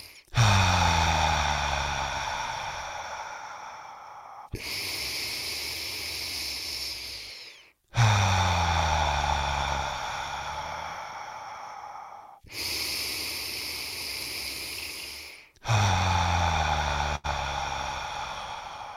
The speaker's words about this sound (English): Okay, so 6 times together, no pause, inhale nose, belly fills like a balloon, exhale mouth, belly to spine. Here's breath number 1, all the way to 6 together.